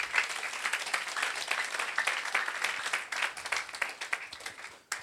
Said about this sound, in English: Oh, if you are clapping, clap.